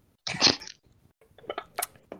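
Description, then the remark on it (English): A breathy slurp as someone sips beer, followed by a few soft wet mouth clicks and swallowing sounds, then a couple of short sharp exhales. “One sip of beer to get me prepped.”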